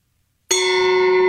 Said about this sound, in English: That's a pretty good gong. Well, it's an actual gong. It'd be better with a softer mallet. Woo! Yeah, you'd get less ping and more bouge.